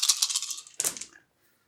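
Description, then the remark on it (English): Three dice rattle briefly, then clatter and tumble across a hard tabletop before settling into silence, with no voices present. “Observation roll is... is not great. It's just 3 dice plus all my panic.”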